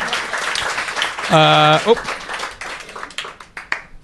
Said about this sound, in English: So big round of applause for those three.